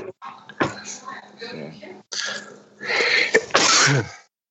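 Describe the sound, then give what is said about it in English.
A loud sneeze bursts out near the end, following a few seconds of indistinct voices and breathy sounds. “Bless you.”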